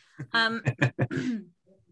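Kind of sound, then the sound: human body sound, throat clearing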